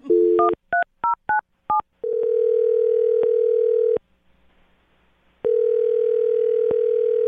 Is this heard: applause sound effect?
no